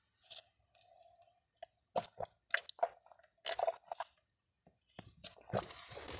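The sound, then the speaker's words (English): Someone gulps down the rest of a drink in a run of wet, irregular swallows and slurps, finishing with a loud, breathy exhale. “Let's chug this down, what we got left.”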